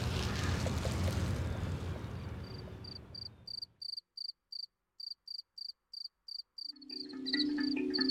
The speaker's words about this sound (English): So there's a single cricket who managed to outsmart us as we harvested them, and he's a male, so I think what I'm going to do is just keep him in my apartment, not harvest him, so I can have him to still chirp.